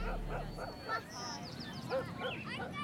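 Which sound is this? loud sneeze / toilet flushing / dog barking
dog barking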